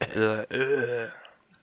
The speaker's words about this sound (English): because you be smoking too much, man. The smoker's hack.